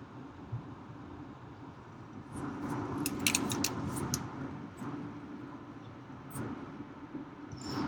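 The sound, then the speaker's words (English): A semi-truck passes on the freeway, its deep rumble swelling over steady road noise for a few seconds before fading back into the constant drone of traffic. “Truck.”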